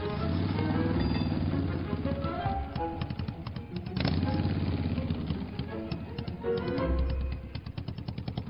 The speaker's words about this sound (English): rode his beloved Harley WLI motorcycle south through the city, enjoying the warm Santa Ana winds in his face.